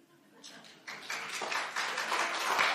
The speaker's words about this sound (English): Very quiet clap on that.